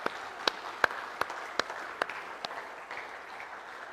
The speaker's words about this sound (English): Can we just give them applause right now? Just say thanks to them.